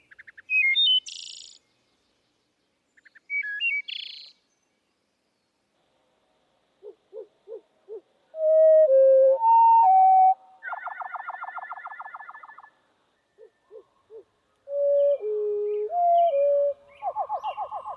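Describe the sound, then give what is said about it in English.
Bird song slowed down to a low, drawn-out pitch: rising note sequences, brief pulsed clicks and long buzzy trills arrive in separate phrases with pauses between, clear, with no talking. “And when you slow them down, you can see that they're actually multiple elements in a row.”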